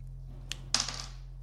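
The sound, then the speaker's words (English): Dice rolled during a tabletop role-playing game rattle and clatter across a hard tabletop: a single sharp click, then a quick burst of bouncing knocks that settle within about half a second. Fairly quiet, with no talking. “I'll use my normal dice.”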